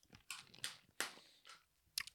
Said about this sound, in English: I'm just going to hear you sucking on these mints now for the next. Mate, you've been fucking sucking on them since the start of the show. I've been doing it quietly, though. But you're not, though.